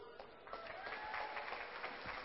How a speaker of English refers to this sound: Wow, I haven't even shared, and you guys are clapping.